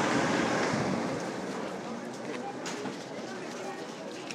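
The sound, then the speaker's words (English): Strong wind outdoors roars and buffets against a microphone with its windscreen removed, in a loud, continuous rush, easing slightly after the first second but staying steady throughout. “I don't know if you could hear any of that windy stuff.”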